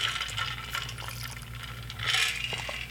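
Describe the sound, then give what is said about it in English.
Water pours steadily into a container, a continuous splashing rush that swells louder near the end, over a low background hum with no voices. “So, water.”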